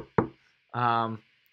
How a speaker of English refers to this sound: And I don't think Clemson right now – knocking on wood right now.